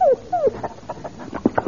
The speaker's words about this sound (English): Say, you've got a dog and a beauty. Hello, boy.